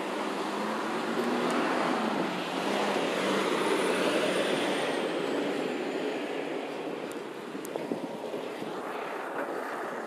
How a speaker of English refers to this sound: I'm in this big-ass truck.